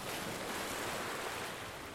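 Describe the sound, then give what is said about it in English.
Ocean water being sucked up by Brill's ship, its suction headed for otters swimming in the water: a loud, continuous rushing roar of churning water, steady for the whole moment, with no voices. “Brill's ship is still sucking up ocean water, and the suction is headed right for Jasper, Olive, and the other otters who continue to swim for their lives.”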